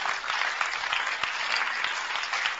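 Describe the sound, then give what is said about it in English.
A church audience claps for Jesus, breaking into steady, sustained applause, dense overlapping claps forming a continuous crackling wash at an even loudness throughout, with no voices standing out. “Is it okay to clap for Jesus?”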